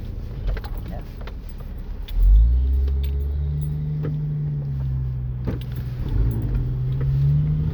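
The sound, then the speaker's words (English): A car engine rumbles from inside the vehicle as the car makes a right turn, surging as it accelerates about two seconds in, then holding a steady drone that slowly climbs in pitch, with occasional light clicks and jingles. “I was trying to make a right turn near a fire truck was in the way.”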